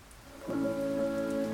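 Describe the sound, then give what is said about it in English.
Heavy rain pours steadily onto a hard surface, a loud, continuous wash that swells after a quiet start, with a sustained droning tone running underneath. No one speaks. “It's just a storm, and it's just rain, and it'll pass.”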